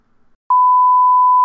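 A steady electronic beep at a single high pitch begins abruptly after a brief quiet moment and holds loud and unwavering for about a second, with no voices present, heard inside a house.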